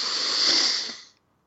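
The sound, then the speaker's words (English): A single long, airy intake of breath through the nose, steady for about a second before tapering off into silence, during a guided breathing exercise. “And then one more time, breathing in through your nose.”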